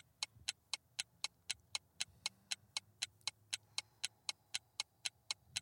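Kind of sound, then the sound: sound effect, quiz countdown clock ticking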